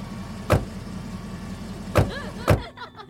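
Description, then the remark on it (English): A car engine runs steadily while three sharp thumps, like doors shutting, land one after another; then the engine sound drops away as the car pulls off. “Your car, sir.”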